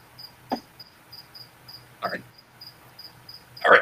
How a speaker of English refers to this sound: Crickets, crickets.